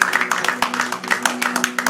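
About three people clap briskly together, their sharp claps landing in a quick, slightly uneven patter for a couple of seconds over a low steady hum, with no one talking.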